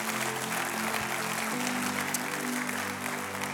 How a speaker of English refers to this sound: Let's just clap, okay? Let's just commit.